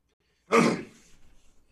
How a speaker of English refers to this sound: I didn't know if you were, you cleared your throat. I didn't know if you were clearing your throat. I cleared my throat. All right, ladies and gentlemen. To let us know that we were back. You just cleared your throat.